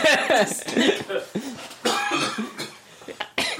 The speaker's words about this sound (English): Now, at least you know why I'm coughing, because that's right there.